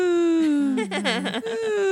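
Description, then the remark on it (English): A baby boy coos in one sustained, high-pitched vocal sound lasting about two seconds, wavering and warbling in the middle before settling back to a steady tone. It is fairly loud, with no talking. “He coos a lot.”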